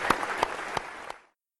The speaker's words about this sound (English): Great. Well, thanks you so much for coming here, and a round of applause for the panel.